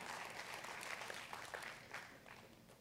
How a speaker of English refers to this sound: I did not hear one masculine clap in that entire round.